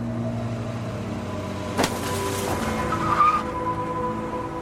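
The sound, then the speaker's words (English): A car engine rumbles steadily as the vehicle swerves around a building onto Main Street in the rain, with a sudden burst of skidding and a brief high tire squeal partway through, loud, no voices. “I swerved around the building and onto Main Street past a pair of security floodlights. A truck drove by, clipping my bumper.”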